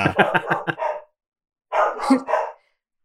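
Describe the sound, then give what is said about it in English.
A dog barks in a quick run of about half a dozen sharp barks, falls silent briefly, then lets out three more. The barking is loud, with no talking. “It's just dog barking.”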